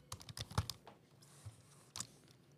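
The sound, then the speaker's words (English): Clacking of keys on a computer keyboard with a microphone angled toward it, a quick irregular burst of taps with a brief pause before a couple more strikes, fairly quiet with no voices. “He's currently angling his mic towards a keyboard so he can do keyboard ASMR.”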